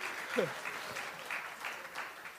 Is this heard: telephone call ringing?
no